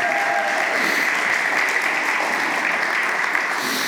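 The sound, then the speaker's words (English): A crowd applauds steadily, a dense, sustained wash of many hands clapping at an even loudness throughout, with no voices standing out above it. “So that's definitely why I want you to clap.”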